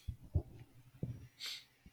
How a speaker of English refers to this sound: if you're going to sniffle, mute your mic.